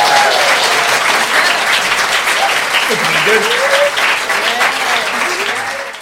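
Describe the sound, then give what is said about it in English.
A large audience claps steadily and loudly for the performers at a break in the show, a dense wash of applause filling the whole stretch, with a few faint voices and whoops rising through it before it starts to taper at the end. “Give our performers a round of applause.”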